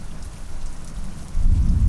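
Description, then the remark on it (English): Steady rain patters throughout while a deep, distant thunder rumble swells low underneath, growing louder toward the end, on a tiny island in the middle of a very large lake. No voices are present. “There's some thunder rumbling in the distance.”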